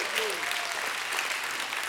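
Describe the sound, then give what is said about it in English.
A church audience claps steadily in a dense, sustained burst of applause, answering a preacher's call to praise Jesus, with voices shouting and calling out praise mixed into the noisy crowd sound. “If you believe it, give him a hand clap and a shout of praise.”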